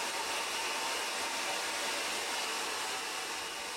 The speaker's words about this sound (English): I was all alone in the house and had started drying my hair.